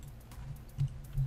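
Soft, scattered computer clicks, a handful of light taps at an uneven pace over a steady low hum, quiet with no one talking, as someone clicks to check a link.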